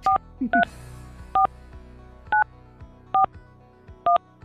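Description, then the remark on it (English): A phone number being dialed on live radio: six short, clear keypad tones beep one after another at a brisk, slightly uneven pace, fairly loud over a faint background hum. “Answer your phone.”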